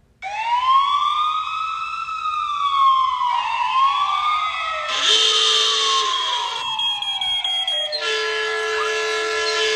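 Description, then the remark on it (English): A loud police car siren wails with rising and falling sweeps, then switches to faster, harsher warbling tones, continuous throughout with no voices. “Actually, a police siren on here, too.”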